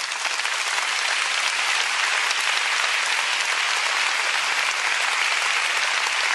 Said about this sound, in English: Come on, let's give your leadership a round of applause and appreciation.